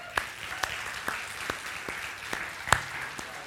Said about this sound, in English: So I'm just going to ask you right now, ask if you've served in the U.S. Armed Forces in any capacity, please stand. Stand. Don't be bashful. Stand. All right, guys, look around. You guys give these guys a hand of applause.